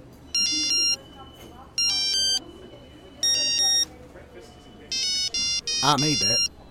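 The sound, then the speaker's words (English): A Pikachu mobile phone plays a homemade ringtone made with its ringtone composer: a simple beeping melody in four short, bright phrases with brief pauses between them, loud, over faint background murmur and a voice near the end. “It's even got a ringtone composer. You want to see this? Watch this.”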